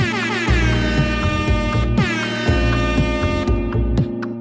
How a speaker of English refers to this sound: Can I get, like, the air horn? Wah, wah, wah, wah, after everything I say?